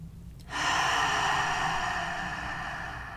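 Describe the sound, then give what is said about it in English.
A deep, airy breath, in through the nose and out through the mouth, begins abruptly after a brief silence, then streams on steadily for several seconds, slowly tapering. No one speaks. “Before we start this episode, I'd like us to take 3 deep breaths, in through the nose and out through the mouth.”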